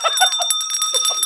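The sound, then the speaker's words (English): A censorship bell sound effect: a rapid, bright bell ringing continuously for just over a second, a steady metallic trill with sustained high tones, loud with no voices over it. “Censorship bell.”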